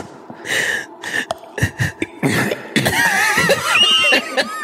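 A few rough coughs burst out in quick succession, then give way to breathy laughter and snickering that runs to the end.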